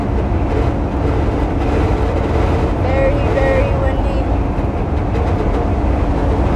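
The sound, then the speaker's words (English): Strong wind buffets a moving car being driven on a very windy day in a steady, loud, low roar that never lets up, while a voice speaks briefly over the rumble. “It's like hard to like press the gas because it's so windy.”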